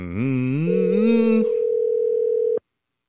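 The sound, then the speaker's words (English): A telephone dial tone on an outgoing call: a steady, unbroken mid-pitched hum lasting about two seconds, briefly overlapping a rising, buzzy gliding tone at the start, then cutting off abruptly into silence. “But let's call up.”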